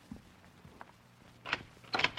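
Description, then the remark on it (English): A door is unlatched and opened at night, with a couple of short rattling, clattering bursts toward the end after a quiet stretch of faint shuffling. No voices. “It was later that night that I knocked on a door.”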